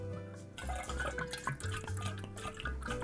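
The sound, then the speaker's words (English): A drink pours steadily into a glass decanter for a few seconds, a continuous splashing trickle with a ringing, gurgling tone and a few drips, and no voices. “We're going to pour that into our decanter.”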